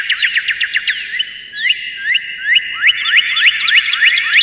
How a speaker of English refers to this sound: Where we live, we see cardinals all the time. They're bright red birds who don't mind living in the city as long as they have plenty of food and trees around, and they have this lovely song.